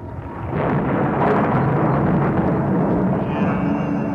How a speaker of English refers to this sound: What was that? Lightning, that's all.